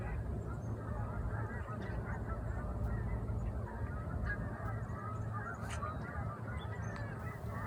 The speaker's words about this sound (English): And to complete the autumn feel, here are some Canada geese flying south over my muskrat shack here in the Gatineau Hills in Quebec.